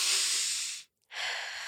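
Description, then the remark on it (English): A deep, airy breath drawn in, a brief pause of silence, then a long breath pushed back out, clear with no talking. “Breathing is where the air comes into your body and then you push it back out.”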